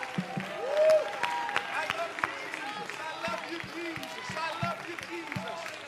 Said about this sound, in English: And somebody give the Lord a hand clap of praise. Hallelujah. One more time, would you lift your voice as you clap your hands and give God a shout of praise.